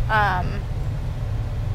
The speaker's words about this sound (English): great traffic.